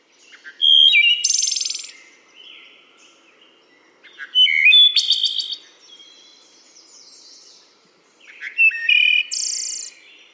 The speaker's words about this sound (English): it's just that familiar sound that I just love to hear. All right. Wood thrush.